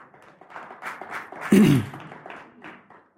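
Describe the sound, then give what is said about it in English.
A light, scattered golf clap from an audience, a small number of hands, soft and uneven, with one louder, fuller burst about halfway through before it tapers off. “That was a nice golf clap, everybody.”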